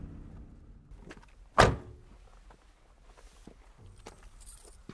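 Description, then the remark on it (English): A sharp, loud thump of a truck door slamming shut as a person gets out of the truck near Umani Falls in the Pondoland region, followed by quiet, irregular footsteps heading towards some bushes and light rustling, with no one speaking. “gets out of the truck and heads towards some bushes.”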